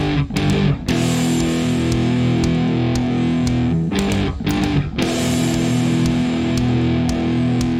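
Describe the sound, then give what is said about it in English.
A heavily distorted electric guitar riff played with a dildo, sustained droning chords broken by several sharp slapping hits, loud and steady with no voices. “Well, he's playing it with a dildo.”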